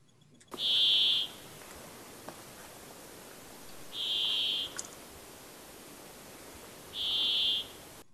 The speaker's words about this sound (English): I think Brambling is a bird. And the bird goes to Brambling. Fringilla, Monty Fringilla.